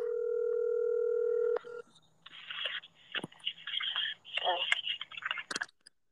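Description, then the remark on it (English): A steady house telephone dial tone hums for about a second and a half, then stops with a click, followed by scratchy, crackling line noise and faint clicks as if a number is being entered. “So here we go. That's house phone.”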